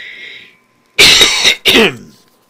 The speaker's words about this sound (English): I have to do a little bit of coughing here, I'm sorry.